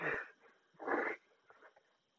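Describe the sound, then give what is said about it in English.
Someone vocally imitates a cutting noise with breathy, hissing mouth sounds: two strong rasping bursts followed by a weaker, broken one, fairly quiet. “I love how my cutting sounds like someone's slurping soda.”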